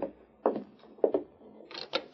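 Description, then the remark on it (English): A door being opened: a few short wooden clunks and clicks, spaced irregularly, then a brief scraping rattle at the end. Fairly quiet, with no voices. “I'll open the door.”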